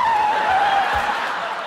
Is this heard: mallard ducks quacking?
no